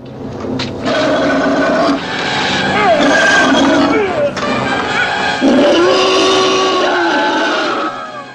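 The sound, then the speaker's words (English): The Gillman, a movie creature, attacking: a loud, raspy, pig-like roar with squealing pitch swoops, running almost continuously for about eight seconds with a short break midway. “Now, honestly, the Gillman sounds like a pig mixed with something else, or death metal vocalist, one of the two.”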